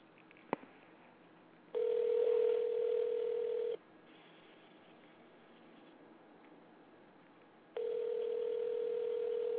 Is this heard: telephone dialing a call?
yes